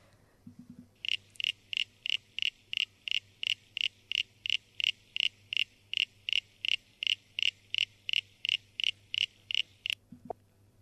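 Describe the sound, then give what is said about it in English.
An eastern common froglet calls in a long, steady series of short, cricket-like creaks, about three per second, loud over a faint low hum. “Well, that one you could be forgiven for thinking it's crickets.”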